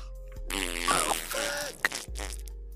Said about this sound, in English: I think I lost the baby. It was a fart baby. Gas twins!